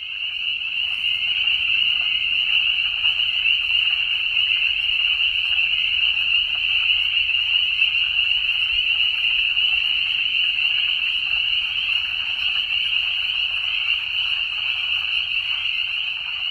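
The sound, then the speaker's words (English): A dense, continuous chorus of frogs trilling together at Lake Griffey in May 2021, a steady high buzzing drone that never lets up, with faint low rumble beneath and no voices. “You've been listening to Frogs Chorusing at Lake Griffey, May 2021.”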